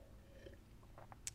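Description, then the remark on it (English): Soft sipping of chamomile tea at night: a few quiet wet slurps and mouth noises, ending in a small sharp click, with no one talking. “I'm just going to sip my tea.”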